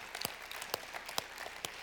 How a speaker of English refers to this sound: Want to clap for that? Let's clap for that then, because that's a good thing to clap about.